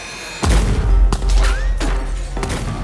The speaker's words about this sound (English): Before anyone can think, the sound of gunshots rip through the air.